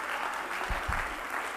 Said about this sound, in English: Well, clap your hands unto the Lord.